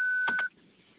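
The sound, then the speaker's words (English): A car's parking proximity alarm sounds a steady high-pitched beep for about half a second as the car pulls into a garage near the walls, clear, with a couple of brief bursts of noise over it before it cuts off to near quiet. “And excuse me, I'm pulling in my garage and my proximity alarm's going off as I get close to the walls.”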